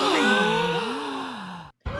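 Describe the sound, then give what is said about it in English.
A studio audience lets out a long, drawn-out collective gasp of awe, swelling and then sliding lower over about two seconds before cutting off abruptly. It sounds fairly loud. “They were gasping in awe this time, the studio audience.”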